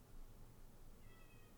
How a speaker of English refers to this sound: Do you hear my cat? Did you guys just hear that?